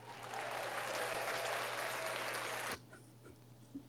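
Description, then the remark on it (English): A burst of dense clapping from a crowd fills the first few seconds, then cuts off abruptly, leaving near silence with a faint thump at the end. “Oh, apologize with the applause, because I fuck with the Hammer sound effect.”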